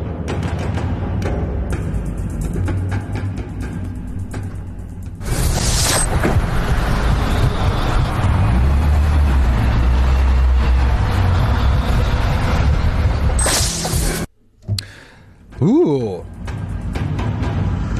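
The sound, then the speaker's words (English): Continuous low rumble of road traffic, with vehicles passing and a louder surge in the middle, heard through a muffled, noisy recording that cuts out briefly near the end. “I think I can hear car sounds.”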